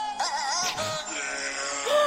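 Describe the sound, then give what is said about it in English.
Goats bleat in long, wavering, nasal cries strung together like a Christmas carol melody in a charity recording, loud, with a bright musical backing running underneath throughout. “this, my friends, is Holy Night, the goat edition”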